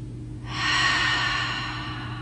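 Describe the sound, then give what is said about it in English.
A slow, deep breath taken in and then exhaled out through the mouth, a soft airy rush that swells and then gradually fades over about two seconds, with no talking and a faint steady hum underneath. “So bringing your attention to your belly, we're going to take a breath in, and then we're going to exhale out through the mouth.”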